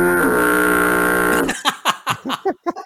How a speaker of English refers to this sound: It's the foghorn. Let's hear the sound effect.